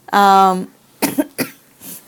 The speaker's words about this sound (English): excuse me. I brought something back with me. Not COVID, thank God. I think it came from Sydney. A lingering cough.